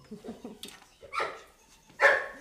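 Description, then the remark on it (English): A dog barks twice, the second bark sharper and louder, after a few soft, low whining yips, at the Parcul Vacant Hermes ranch and hotel complex in Romania. “The stables are filled with ponies, a horse, and puppies.”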